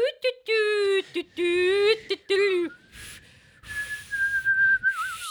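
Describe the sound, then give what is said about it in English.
A person whistles in a breathy, wavering way, drifting through a few sustained tones with brief breaks, then thinning into a higher, airy whistle mixed with hissing breath, fairly loud. “Oh, no, that's just a really shitty whistle.”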